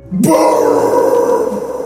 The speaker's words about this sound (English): No, sorry. It's burp. Burp. I belched loudly and rubbed my thick gut as I finally felt my hunger pains subside.